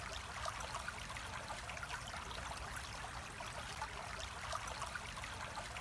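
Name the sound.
flowing stream water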